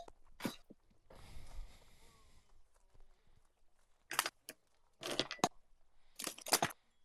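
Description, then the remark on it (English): Dice clatter in short bursts of sharp, bright clicks across the second half, following an earlier rough rustling, like rummaging, and a single click. No one speaks. “Okay, where are my dice?”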